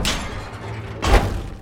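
A trap door under a banana stand thuds open with a single heavy, dull impact, fairly loud, after a brief scraping rustle, with no voices present.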